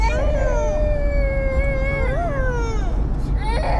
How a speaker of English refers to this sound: It just is his kids. His kid. Two kids. Screaming. Crying in what sounds like the car.